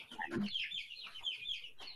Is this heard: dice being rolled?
no